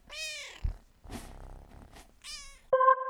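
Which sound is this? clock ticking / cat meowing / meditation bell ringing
cat meowing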